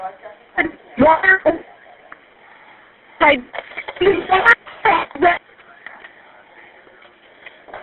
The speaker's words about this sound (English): Ma'am, I don't know why you're yelling at me because your cell phone is breaking up. I can't understand what you're saying.